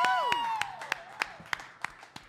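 A small bar audience applauds a singer with steady, evenly spaced handclaps, while a bright whistle-like cheer glides downward at the start. Moderately loud, with no talking.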